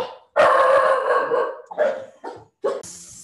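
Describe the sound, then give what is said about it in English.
Dogs bark and howl excitedly in the background, starting with a long drawn-out howling bark followed by a few shorter, choppy barks and yips, fairly loud, with no talking. “Sorry, just had some crazy dogs going on in the background there.”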